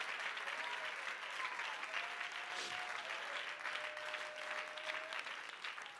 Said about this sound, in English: Somebody clap your hands unto the Lord. Come on, clap your hands unto the Lord and give him praise.